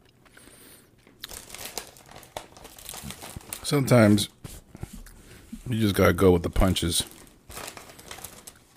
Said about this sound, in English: I had to have my Truly, and I got a croissant. So forgive me for eating right now, but a brother's got to eat.